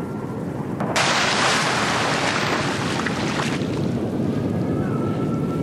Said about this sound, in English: And with a huge gust of wind, the raft had flipped over.